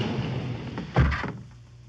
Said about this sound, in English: The gallery was a large room. Its walls were covered with paintings. As Mike and Karen stepped into the room, the wall behind them slid closed.